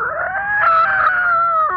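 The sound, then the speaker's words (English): A really angry cat lets out one long, loud, drawn-out howl, a wavering tonal yowl that rises slightly and then trails off with a brief drop at the end, heard on its own. “It sounds like a cat.”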